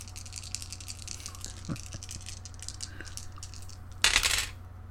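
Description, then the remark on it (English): Four dice clatter onto a tabletop in a short, bright rattling burst near the end, preceded by a few soft scattered clicks, fairly loud against a quiet background hum. “I will put down one of With these what?”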